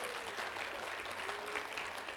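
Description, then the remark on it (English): A crowd applauds a graduating student from Marysville who is going to Cleveland State, a steady, dense wash of many hands clapping at once with no distinct individual claps, holding at an even level throughout. “Yeah, you can go ahead and clap for her there.”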